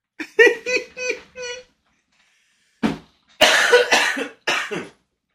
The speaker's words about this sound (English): I'm about to cut out every time you fucking cough. My fault, bro. I'm sick. I'm too sick.